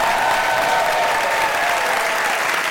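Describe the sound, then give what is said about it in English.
A large audience claps loudly and steadily for Adam Savage at a live show, a dense, continuous wash of applause without pause from start to finish. “Ladies and gentlemen, I would like you to have a huge round of applause for Mr.”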